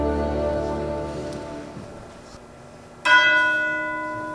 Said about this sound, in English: What? The clock. 1 o'clock.